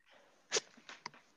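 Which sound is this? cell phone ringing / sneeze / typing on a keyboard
sneeze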